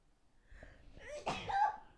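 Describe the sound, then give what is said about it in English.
A single sneeze: a short sharp intake of breath followed by an explosive, breathy burst, with no talking around it. “I can just sneeze. Do it. No one will judge you.”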